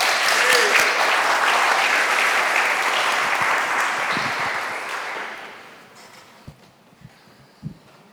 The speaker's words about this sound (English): I'm going to have him come up and speak to us really quickly about his organization and the work that he's doing. Could we give him a round of applause?